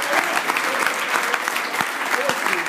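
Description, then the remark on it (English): A crowd applauds steadily, a dense wash of clapping that stays loud and even throughout, with a few sharper individual claps standing out, in recognition of $600,000 raised at Ohio State for kids with cancer. “That needs a round of applause.”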